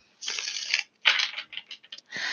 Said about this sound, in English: I'm shuffling the Tarot Oshun deck. I almost said tarot again. Oh, well.